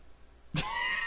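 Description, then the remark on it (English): A pet cat sneezes once, a quick, sharp, breathy burst that stands out against quiet surroundings, followed by a faint lingering whine-like tone. “It's basically the whole like, my cat just sneezed right next to me.”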